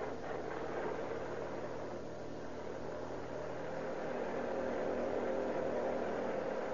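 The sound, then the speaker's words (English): A passing sedan's engine runs with a steady, low rumble and broad whirring hiss that holds at an even loudness throughout, with no voices. “Here comes a car. Turn over your motor.”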